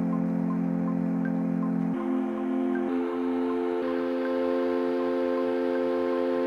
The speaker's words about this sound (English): So what I did next was I just played it on the smart chords function on GarageBand on the iPad. And then what I did was I added loads of sustain and a long tail to the note, so it sounded like this.